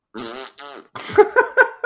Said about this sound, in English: I like the fart noise, too.